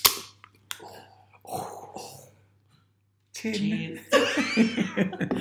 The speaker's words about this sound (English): Just got to crack open and have a drink. I'll join you.